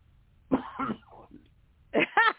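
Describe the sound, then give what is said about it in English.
A person coughs several times: two rough coughs with a softer trailing one, a short pause, then two more harsh coughs in quick succession, moderately loud. “Who was that coughed?”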